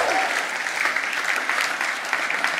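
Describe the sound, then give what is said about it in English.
A room full of people at Trinity Cheltenham claps steadily for a couple married the day before, a dense, even patter of applause that holds at a constant moderate loudness throughout, with no voices standing out. “Little round of applause.”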